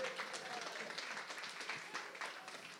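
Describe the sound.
An audience claps in a dense, steady burst of applause lasting a few seconds, many overlapping hand claps forming a crackling wash at a moderate, even level, with faint voices mixed in.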